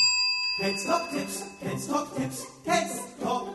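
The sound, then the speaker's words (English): A bicycle bell gives a bright, metallic ring whose clear tones linger while a short, bouncy musical jingle plays over it. “Ring the bell.”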